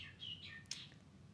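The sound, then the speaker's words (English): A bird chirps very close to a house with a quick run of high, sliding whistles and a sharp final note, over a low steady background rumble. “There's a bird very close to the house right now. I can hear it.”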